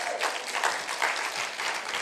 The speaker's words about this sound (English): Can you give him a big hand clap today?